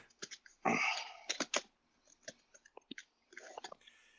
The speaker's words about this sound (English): well, are you shuffling cards?